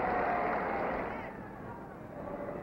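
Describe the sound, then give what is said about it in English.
A large Cleveland stadium crowd at a baseball game cheers in a dense, steady roar that swells loud at first, eases slightly, then rises again, with no single voice standing out, after pitcher Narleski strikes out Dusty Rhodes on three straight pitches in the seventh inning. “Dusty Rhodes, who's had 4 hits in a row in the series, steps to the plate and Narleski fans him on 3 straight pitches to give the Cleveland crowd a chance to cheer.”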